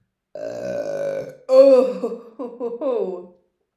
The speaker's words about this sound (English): I don't care. If you don't like burps, please get out of here.